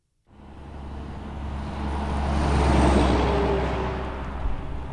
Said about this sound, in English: The flow of trucks coming and going to and from Enviva's wood pellet plant in rural Sampson County is constant. About half the vehicles coming down these two-lane roads are regular cars, and the rest are large 18-wheelers.